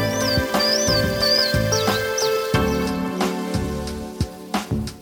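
Chimney swift calls: a series of quick, high twittering chirps repeating at a steady pace, set over a loud musical backing that fills the lower range throughout.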